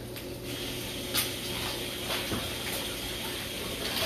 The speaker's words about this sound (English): If you get your hands wet with cold water, rinse off all the stuff. The cold water will kind of help the stuff not stick to your hands quite as much.